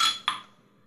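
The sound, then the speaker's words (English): Two bright clinks of beer glasses tapped together in a toast, close together in time, each ringing briefly before fading, with no talking. “sit down, goose fraba, and have a beer with me, all right? Cheers. Cheers.”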